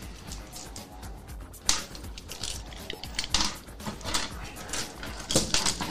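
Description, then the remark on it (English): Dice clatter and tumble across a hard tabletop for a combat cybermancy roll that comes up a 1, in a run of sharp, irregular clicks and rattles, with a few louder knocks standing out over a steady low background. “She is making a combat cybermancy roll against Pro.”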